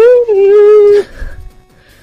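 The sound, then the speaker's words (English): A voice imitates the Super Mario 3 whistle jingle: a loud, short sung tone that steps down slightly in pitch and holds for about a second before breaking off into faint noise. “So number two on our list, our top list, is the Super Mario 3 whistles.”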